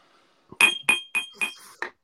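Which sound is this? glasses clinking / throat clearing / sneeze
glasses clinking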